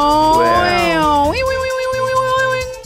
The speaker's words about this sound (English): Sound effect, lightning meow.